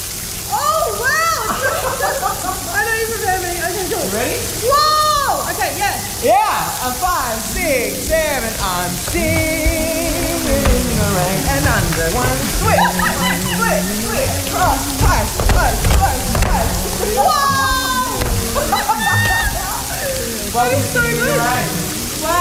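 A steady rush of water pours and splashes down over people without pause, loud and hissing, while several voices talk and exclaim over it the whole time.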